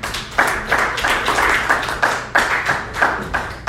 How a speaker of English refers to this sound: I hate my job. Clap if you hate your job.